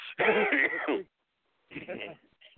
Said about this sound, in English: He's coughing.